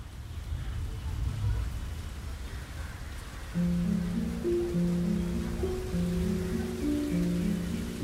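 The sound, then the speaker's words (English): Steady rain hisses evenly throughout outside the mother house in Calcutta, soon joined by low sustained musical tones that layer over the downpour without drowning it out. “Hundreds of people stood outside in the rain.”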